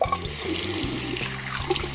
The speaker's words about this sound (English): I think he's in the bathroom. Let me turn on the microphone. Oh, yep, he's in there washing hands.